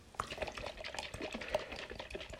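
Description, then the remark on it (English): Coconut water sloshing and trickling out as the coconut is shaken, a continuous wet gurgle with small splashy bursts and no voices. “We should have picked one with less water.”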